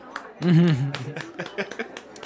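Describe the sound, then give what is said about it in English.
A short burst of hand clapping, a handful of crisp, slightly irregular claps following a brief voiced sound, like a laugh or exclamation, at the start. “Yeah, I'm just going to clap for Jarrell.”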